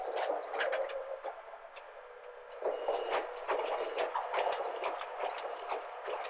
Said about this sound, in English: What? But I haven't set anything to print. They're just black. It's just printing black. Oh my God, it's all over me. It's all over my fingers. It won't stop. Why won't you stop?